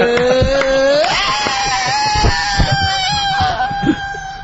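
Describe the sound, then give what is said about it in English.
A man belts out a long, loud rock-style scream, sliding upward in pitch early on and then holding a strained, sustained wail for about four seconds. “… doing the rock scream”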